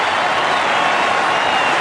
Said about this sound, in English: 18,000 people rise to their feet and cheer one of the greatest batsmen of all time.